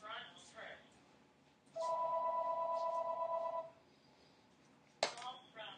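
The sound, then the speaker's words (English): A shop telephone rings once with a steady electronic trill lasting about two seconds, loud, amid background chatter, followed by a sharp click; the caller is a man standing outside the shop. “The one that's standing outside is calling the shop. Go pick up the phone.”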